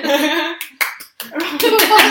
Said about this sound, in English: Round of applause.